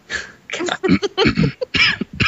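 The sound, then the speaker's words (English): A fairly loud fit of coughing from a person with a sore throat and congestion: several rough, throaty bursts in quick uneven succession over a couple of seconds, with no talking. “You gave a pity me cough right there.”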